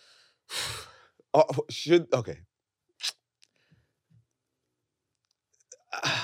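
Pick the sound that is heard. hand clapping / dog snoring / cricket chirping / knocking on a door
dog snoring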